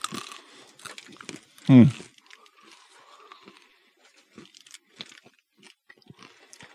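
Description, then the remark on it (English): Someone chews a crunchy sweet-and-salty nut snack, with one loud crunch early on followed by softer chewing and faint crinkling of a wrapper, broken by brief speech sounds. “I'm actually going to eat some more of this.”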